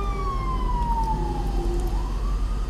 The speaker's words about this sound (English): There's an ambulance going by.